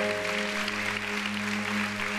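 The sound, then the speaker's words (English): A crowd applauds steadily, a dense wash of many hands clapping at constant loudness, with a faint low electrical hum running underneath throughout. “The reason we clap is because Jesus loves us and he wants to change us”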